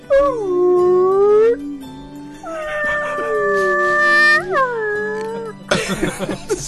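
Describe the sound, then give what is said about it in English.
A voice imitates a whale call with long, drawn-out moaning tones that slide up and down in pitch, repeated in a few sustained swells, ending with a brief burst of noisy laughter-like sound. “Give us something easier like whale. You're at a whale farm.”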